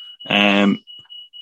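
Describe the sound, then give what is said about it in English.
A house fire alarm, set off by eggs left on the pan, sounds a steady, high-pitched electronic tone throughout, with a brief burst of a person's voice over it partway through. “Our fire alarm's going off.”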